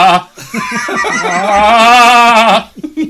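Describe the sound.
A man's voice imitates the anguished scream of a movie character who finds his dead child: a short broken lead-in, then one loud, sustained, wavering wail lasting about two seconds, strained and bleating in tone, ending with a few quick gasps.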